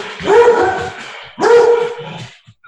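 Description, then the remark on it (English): A dog lets out two loud, drawn-out barks about a second apart, clear, with no one talking over them. “I'm surprised my dog, who's right behind me, is not responding to that.”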